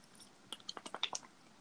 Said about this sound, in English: What are you doing? Drink of water. Is that what that was?